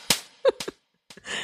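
A slap sound effect: a few sharp, smacking hits in quick succession, a short pause, then two more quick smacks trailing into a brief hiss of noise. No one speaks.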